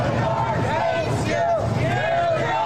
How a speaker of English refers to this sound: Anyway, Trump's motorcade was met by a pretty vocal crowd who welcomed him back to New York City in quintessential New York style.